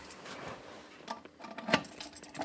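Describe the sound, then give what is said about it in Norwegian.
Keys jingle and scrape as a lock in a bank vault is unlocked, with scattered metallic clicks and one sharp, bright clack of the mechanism turning. No one speaks. “Skal du låse opp?”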